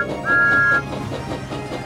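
Thomas the engine's steam whistle gives one short, steady, high-pitched toot lasting about half a second. It rings out clearly over a busy, continuous background bed.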